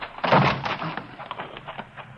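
A heavy thud as a side door is forced open, followed by a string of smaller knocks and rattles that trail off over a couple of seconds.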